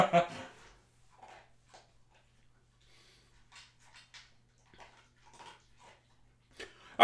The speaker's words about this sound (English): I promise you that when I feed this dog... She never eats until about 9 p.m. Yeah. We're recording this at what, 2? 2 p.m., if that. She's only doing it because we're recording the podcast.